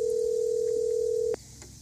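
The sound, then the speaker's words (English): A phone call ringing out as a woman is dialled to see if she picks up: one steady, clear electronic ring tone holds for just over a second, then cuts off abruptly, leaving faint line hiss with no voices. “We're going to see if she picks up the phone.”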